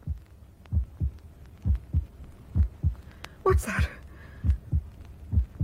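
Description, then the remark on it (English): A steady heartbeat, the speaker's own, thumps in low paired beats about once per second throughout, with a voice briefly speaking over it partway through. “How silly of me. My own heartbeat.”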